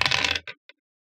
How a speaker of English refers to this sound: All right. Here, I'll roll dice.